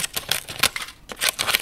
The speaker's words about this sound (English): That sound? That is the secret ingredient that will turn almost any liquid into a solid. Well, a wibbly-wobbly, almost solid. Sam is cutting up leaves of pure platinum-grade gelatin.